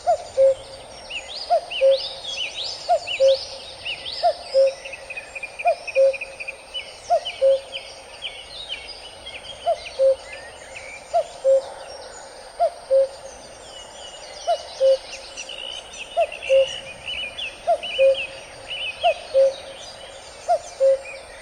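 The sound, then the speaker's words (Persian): A cuckoo calls its two-note cu-coo over and over at a steady pace, clear, while other songbirds chatter softly in the background. “یا صدای کوکو که به نوعی صداش یه حالت نوستالژیک برامون، در واقع صدای ساعت‌های قدیمی دیواریه.”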